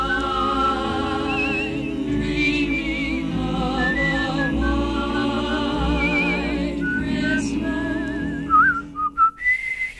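Someone whistles a flowing melody with wavering vibrato over a full instrumental accompaniment, steady and continuous, ending in a few short, breathy whistled notes.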